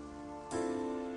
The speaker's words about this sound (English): left the cave and stepped into the rainy evening.